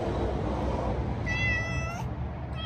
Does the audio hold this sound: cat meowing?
yes